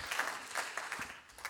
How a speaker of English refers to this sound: Oh, clap your hands unto Him. Come on, somebody.